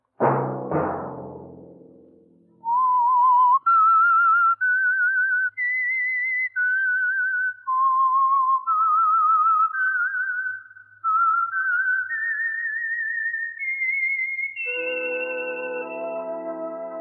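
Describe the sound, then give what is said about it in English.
A clear, solo whistled melody rises and falls in sustained notes after a brief low musical chord, loud, ending as an orchestral chord swells in underneath. It is the signature theme of a program broadcast each Sunday. “Let that whistle be your signal each Sunday for the Signal Oil program, The Whistler.”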